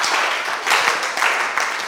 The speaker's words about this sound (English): Why don't you clap for Jesus and stand to your feet.